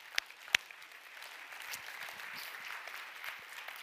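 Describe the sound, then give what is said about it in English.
A church audience claps their hands to the Lord during a morning service: two sharp claps stand out at the start, then a steady, fairly soft patter of many hands keeps going throughout. “Someone clap your hands to the Lord this morning.”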